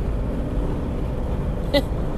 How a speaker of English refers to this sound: I honked the horn. I didn't mean to.